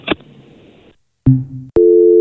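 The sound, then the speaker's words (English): A phone handset clunks down as a call is hung up, then after a brief silence an electronic telephone busy signal starts up, its steady beeping tone loud with no voices. “Hang up the phone when you don't want to talk to us anymore?”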